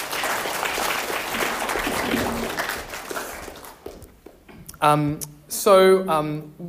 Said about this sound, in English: So thank you for what you've done. Thanks for having us. Yeah, thanks so much. Round of applause.